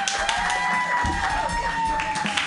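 A comedy show audience claps and cheers steadily for a comedian being introduced, a dense wash of many hands at an even loudness for a couple of seconds, with a faint sustained tone running underneath.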